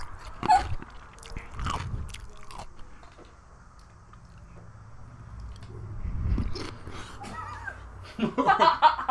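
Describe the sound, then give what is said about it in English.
Wet crunching as someone bites into and chews a pickle, several sharp bites spaced out over a low background hum, with a brief giggle near the end. “About to eat this motherfucking pickle.”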